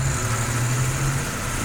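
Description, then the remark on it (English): The engine of a great big red London bus of the old Routemaster double-decker style, the Local Haunts city sightseeing tour bus called ALF in Portsmouth, idles with a steady, low rumbling drone that holds an even loudness throughout, and no voices are heard. “It's called ALF, and it's a great big red London bus, one of the old Routemaster style.”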